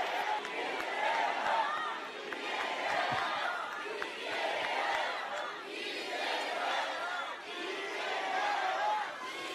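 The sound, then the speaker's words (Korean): A large crowd of party members claps and cheers to give strength to party leader Lee Jae-myung, on the eighth day of his hunger strike, a dense wash of applause with shouting voices rising and falling in loudness in waves. “여러분, 박수로 이재명 대표에게 힘을 주십시오!”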